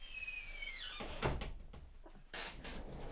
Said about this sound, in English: And no, that's not the TSA or the DHS coming in here to whack me. That's me shutting the door to make sure that the sound of the dishwasher in the next room doesn't disturb us here.